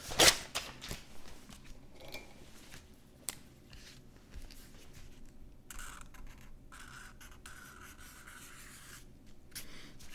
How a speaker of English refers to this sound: Here, I've got paper and pen. I'm going to draw you a picture.